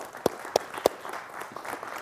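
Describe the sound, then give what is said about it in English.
Three sharp, evenly spaced hand claps ring out in quick succession, followed by a soft, scattered wash of crowd noise as the clapping from the audience trails off, celebrating 124 births this year with help from Stanton Health. “Can I just say that's something we should be clapping and celebrating right now?”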